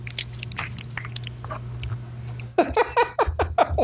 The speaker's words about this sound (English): I can't believe you crumpled that one up.